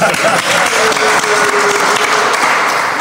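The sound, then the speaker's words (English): Steady, dense applause from a crowd cheering a guest's first car, an Acura Legend coupe: a loud sustained wash of clapping hands that holds at an even level for about three seconds, with no one speaking over it. “Let's make some noise for that.”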